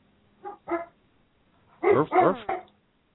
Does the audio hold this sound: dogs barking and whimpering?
yes